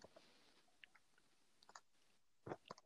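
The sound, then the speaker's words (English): Close, crisp crunching of hard sweets being chewed, irregular bursts of crackly bites that grow louder and denser toward the end, with quiet gaps between. “I hope I'm not crunching sweets into the thing.”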